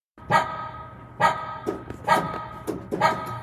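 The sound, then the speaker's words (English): A small dog barks four times in a steady, fairly quick rhythm, sharp and high-pitched, with softer yips in between, alone without any talking. “And out came a little dog.”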